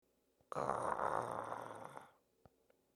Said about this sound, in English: I think my stomach growled. Your stomach is growling?